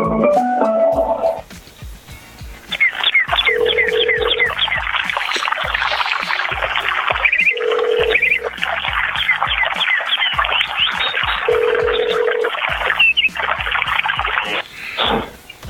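A chirping phone ringtone plays on its own, loud, with rapid trilling chirps broken by a steady lower beep that returns in a repeating cycle of roughly four seconds.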